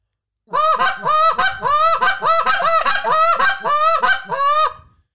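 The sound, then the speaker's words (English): A goose call blown in a rapid, steady run of short honking hiccup notes, each breaking upward in pitch, loud and continuous for about four seconds with no voices. “But yeah, but I'll just normally do just like a hiccup.”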